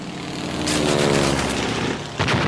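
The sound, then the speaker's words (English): Rapid, rattling gunfire from two planes firing in an aerial crossfire roars over a steady, droning aircraft engine, loud and continuous, with a fresh sharp burst near the end. “The two planes are trying to catch us in a crossfire. I think a bullet just flew past my head.”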